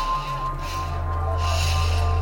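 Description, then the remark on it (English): Heavy, slow breathing comes through a phone line on a police 999 emergency call, a few drawn-out breaths rising and falling over a steady electrical hum, with no one speaking. “All I hear is breathing.”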